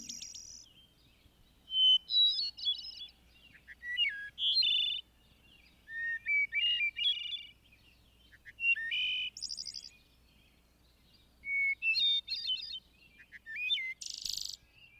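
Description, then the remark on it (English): A thrush sings a series of clear, flute-like phrases, each a second or two long and separated by short pauses, varying in pitch against a quiet background. “The wood thrush and the hermit stand at the head as songsters.”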